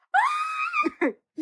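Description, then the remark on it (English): A single voice lets out a short, high-pitched celebratory scream, held for under a second, then trails into a couple of quick breathy vocal bursts. The scream is a playful imitation. “I'm doing like a little Kaz scream.”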